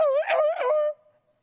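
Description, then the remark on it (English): A person vocally imitates a dog's pained scream, as a dog in the country sounded when hit with a piece of wood or shot with a BB gun: one high, wavering, whining yelp lasting about a second, loud and alone, then quickly trailing off into a faint fading tone. “That's how our dog sounded in the country when I was being raised and we hit him with a piece of wood or shot him with the BB gun or something like that to get him off the property.”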